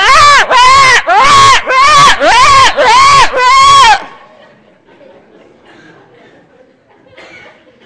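A crowd clamors and shouts in six loud, rhythmic bursts, like a chanted cry repeated in unison, then abruptly drops to a faint, low murmur.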